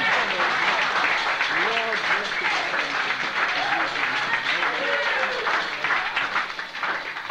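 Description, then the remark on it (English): Steady applause from an audience at a Christian gathering, a dense, continuous patter of many hands clapping for several seconds for a man who has just spoken, with a few voices calling out beneath it before it starts to thin. “So we'll give him a clap.”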